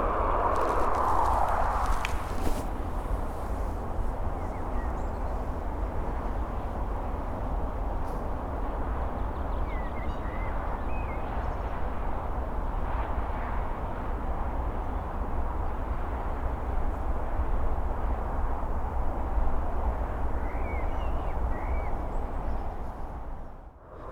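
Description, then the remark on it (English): A steady, unbroken roar of motorway traffic, heavy with Easter traffic, heard in the background from the churchyard of Loxton Parish Church, fills the whole recording, with faint footsteps at the start and a few brief bird chirps over the top. “It would be a peaceful place if it wasn't for the roar of the motorway in the background.”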